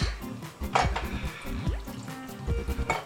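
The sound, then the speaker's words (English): Water pours steadily into a cooking pot of cholent with potatoes, a gurgling, splashing stream with shifting pitch as the vessel fills, no voices present. “Add more water, because this is going to cook a long time, and it's going to absorb the water.”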